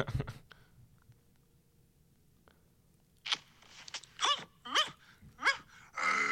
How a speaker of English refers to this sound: I just came out of nowhere and then everyone started barking for some reason.